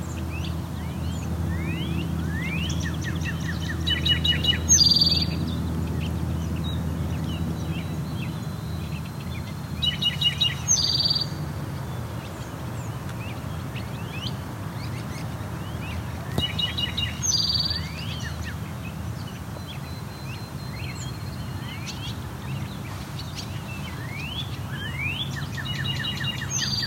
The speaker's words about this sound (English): We're also hearing two northern cardinals.